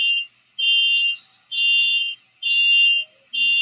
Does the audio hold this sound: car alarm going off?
yes